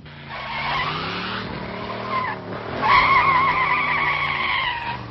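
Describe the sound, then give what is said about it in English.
Car tires squeal in a long, continuous skid over a revving engine, the high screech wavering and growing louder partway through, with no clear crash or impact at the end. “Unlicensed drivers in cars with plates slam into parking cars. They just end up hitting the wall.”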